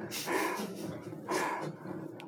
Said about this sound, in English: So much breathing. Okay. Now you take six. You can hear Marquand's voice in there. I think that's just Frank Oz being tired. Like, that's not even Yoda breathing. That's just Frank Oz.